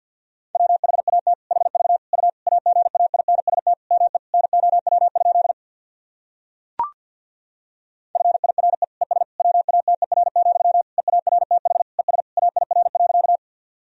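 Very fast Morse code at 50 words per minute, sending practice sentences: a single steady mid-pitched tone keyed in rapid dots and dashes, sent in two long runs separated by a brief pause with one sharp click.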